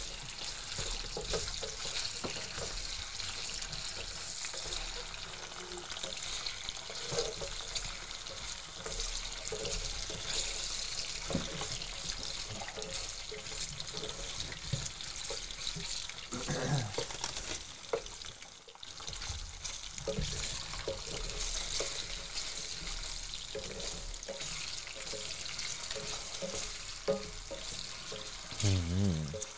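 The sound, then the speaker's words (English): Potatoes frying in a pan for a tortilla give off a steady sizzle, a dense crackling hiss that runs without pause for the whole stretch, with small pops and shifts in texture along the way. “So this is actually the most boring part of doing the tortilla, which is frying the potatoes.”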